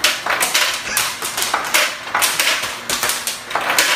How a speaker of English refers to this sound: this is a Samsung that was trending on YouTube yesterday. A lady came downstairs and for no reason, her refrigerator was just dispensing ice. There was ice cubes all over the kitchen floor. And I heard this sound. I said, this is almost intoxicating.